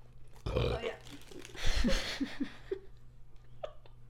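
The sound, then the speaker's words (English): A loud, drawn-out burp rumbles for a couple of seconds, deep and gurgling, followed by a few softer throaty sounds and quiet breaths. “You just burped in their face.”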